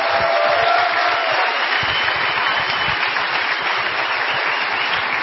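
A crowd applauds the speakers on the host's request, a dense, sustained wash of many hands clapping at an even loudness from start to finish, with a faint whistle early on and no talking over it.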